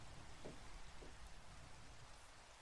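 Steady rainfall with a soft, continuous hiss, a few faint droplet patters standing out now and then. It's quiet and even throughout, with no voices.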